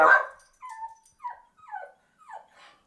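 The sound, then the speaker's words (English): A dog gives one sharp bark followed by a series of high, whining whimpers and yips, excited, with no talking over it. “My dog just went nuts because he likes the fridge, apparently.”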